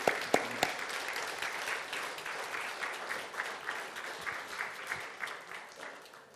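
A room full of people claps steadily for several seconds, a dense patter of hand claps with a few sharp, louder claps near the start, fairly close and sustained throughout.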